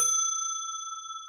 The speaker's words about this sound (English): The phone's ringing and it's on the special George Sell line. I can scarcely believe it. This phone hasn't rung in more than 50 years.